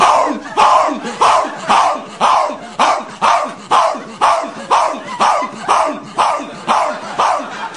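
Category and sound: animal, dog barking repeatedly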